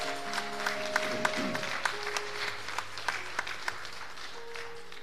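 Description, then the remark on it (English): A church audience applauds the youth with steady, dense hand clapping, sharp individual claps standing out from the crowd, while sustained keyboard or organ tones hum quietly underneath. “If you would give a hand clap for the youth one more time.”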